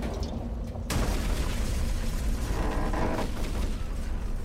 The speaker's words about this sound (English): I ducked down as the rocket hit somewhere to our left, knocking us onto our side.